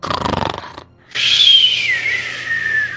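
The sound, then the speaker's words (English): A voice mimics snoring: a rough, buzzy inhale, a brief pause, then a long airy whistling exhale that slowly falls in pitch. “No, she's just sleeping. You just see her snoring.”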